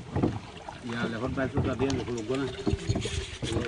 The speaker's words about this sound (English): In a small boat crossing a tidal river just outside Sitwe.